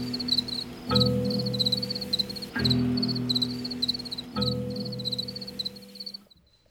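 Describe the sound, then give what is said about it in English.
A dense chorus from a colony of male crickets chirps in overlapping, interlocking polyrhythms, with bright pulsing trills layered over a low droning hum that swells every couple of seconds before the sound cuts off. “Like a lot of the males are locking in and creating polyrhythms, and then you hear different, it's fantastic.”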